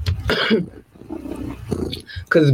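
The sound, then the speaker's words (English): A woman imitates a big cat's roar with her voice: loud, growly bursts, one near the start and another at the end, separated by quieter rumbling vocal sounds. “You don't want the roar.”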